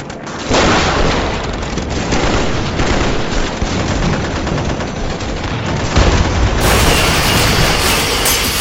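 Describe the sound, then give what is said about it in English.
Loud, sustained gunfire from every available weapon, fired from bushes by a river at a helicopter, roars continuously with dense overlapping bursts and heavy booms, building to an even louder blast near the end as the helicopter explodes, with no talking. “We fired pretty much every weapon we had.”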